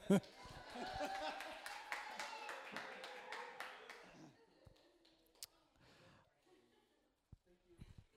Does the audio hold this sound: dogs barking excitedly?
no